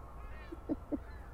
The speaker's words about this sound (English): And this goose is really contributing to us, guys. I freaking love it.